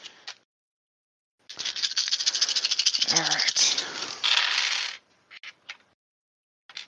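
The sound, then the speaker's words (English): Dice rattle and clatter steadily for a few seconds, a dense clicking, then settle with a few scattered taps; a faint voice may be present. The dice are rolled for an attack in a tabletop game. “Well, she's going to use her breath attack again, because I just have more dice to use.”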